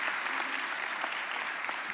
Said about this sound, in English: This is a lot of moving parts, and they deserve our thanks. Let's have a quick round of applause. Thank you very much.